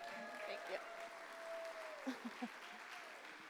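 An audience at a church service gives one more round of applause and appreciation to celebrate the end of a woman's internship, clapping steadily throughout in a dense wash at even loudness, with a few short vocal whoops or shouts rising out of it midway.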